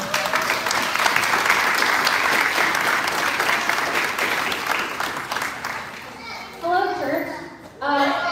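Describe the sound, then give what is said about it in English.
An audience applauds as speakers come up to present, a dense sustained patter of many hands clapping for about six seconds, then fades as voices begin talking near the end. “So they'll come on up and give them a round of applause.”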